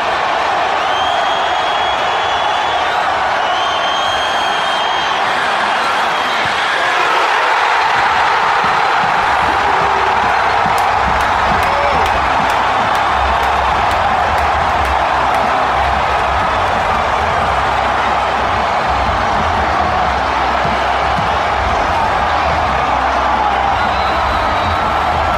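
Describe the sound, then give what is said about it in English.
A football stadium crowd roars and cheers in a loud, continuous wash of noise that holds steady for the whole stretch, with a few shrill whistles cutting through early on. Recorded on a cell phone on the field, at about the 10-yard line on the Steelers side. “Tell me again how you're better football fans than Raider Nation.”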